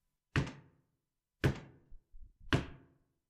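Three heavy knocks on the door of a tiny house in the middle of the night, evenly spaced about a second apart, each with a deep resonant thud and short decay, with a faint shuffle between the second and third.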